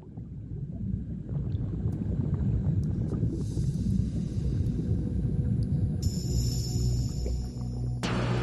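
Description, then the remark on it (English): A boat out on open water off the coast of Spain, with a steady low rumble of wind and waves filling the scene continuously and no voices. “We are in a boat off the coast of España.”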